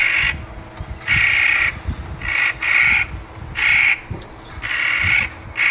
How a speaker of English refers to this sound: The sweet sounds of the Clark's Nutcracker